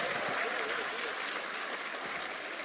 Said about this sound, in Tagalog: Sige, palakpakan yung Panginoon. Oh, by the way, pag pumapalakpak kayo sa Diyos, ha? Pakita niyo naniniwala kayo talaga. Huwag niyo tipirin.